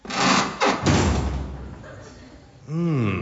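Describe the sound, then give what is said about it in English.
A heavy isolation tank lid slams shut with a loud, booming thud, preceded by a scraping rush and followed by a fading rumble, then a short wavering vocal sound. “Sorry, I got nervous when you shut the lid.”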